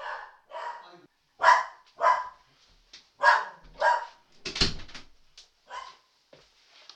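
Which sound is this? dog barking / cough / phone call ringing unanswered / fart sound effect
dog barking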